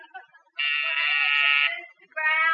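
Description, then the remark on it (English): A loud, harsh office intercom buzzer, pressed from a button in the secretary's office, sounds in a steady one-second drone, pauses briefly, then starts buzzing again; a faint voice murmurs just before the first buzz. “You put the button in her office and the buzzer in here in yours.”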